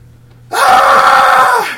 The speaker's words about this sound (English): You hear Zane scream from behind you.